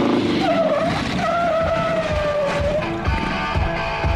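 A car screeches in with tires skidding, a loud, sustained squeal that rises and holds for a couple of seconds over a rumbling engine, then gives way to rough road noise.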